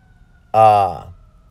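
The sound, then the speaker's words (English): A fire truck going by lets out one loud, brassy siren blast of about half a second, then cuts off and sinks into a faint background rumble. “I had a train of thought and I lost it because there's a fire truck going by.”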